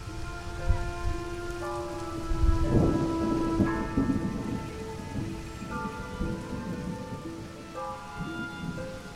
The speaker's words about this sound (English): Storms come in all shapes and sizes. Striding through swollen puddles in a dismal downpour,